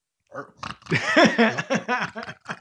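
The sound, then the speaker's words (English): A person's voice imitates a pig, making a rapid run of nasal grunts and snorts for about two seconds, rising and falling in pitch with short gaps between the bursts. “I don't know how pigs sound. That's close.”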